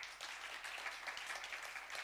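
A steady wash of audience applause, many hands clapping in dense, continuous patter with no pauses, bright and crackly in tone at a moderate level, with no voices over it.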